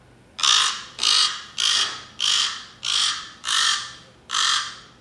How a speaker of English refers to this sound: The common raven makes a variety of calls, including these sounds. Crack. Crack. Talk. And Wonk, wonk. Is that what it says? It's like there's a raven in this room right now. But I did pull up what they sound like.